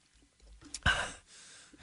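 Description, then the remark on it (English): A voice imitates the sharp, breathy gasp someone makes after finishing a drink, a sudden loud intake of air followed by a softer exhale, with no other sounds. “My boyfriend makes a gasping sound whenever he's done drinking something.”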